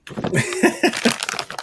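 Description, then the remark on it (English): Paper crinkling and rustling steadily as an item is unwrapped, with a bright, scratchy texture throughout. People talk over it in short bursts. “I just took mine out the paper.”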